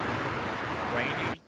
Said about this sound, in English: It's raining louder again.